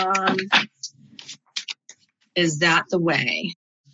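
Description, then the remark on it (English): Crisp papery clicks and brief flutters of a tarot card deck being shuffled, falling between stretches of a voice talking at the start and end. “Okay, there's my final shuffle.”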